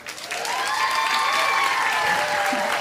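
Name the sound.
audience applause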